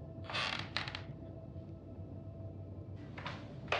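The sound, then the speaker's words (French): Wooden floorboards creak underfoot in a few short bursts, one near the start and another toward the end, over a quiet, low background hum. “Le plancher.”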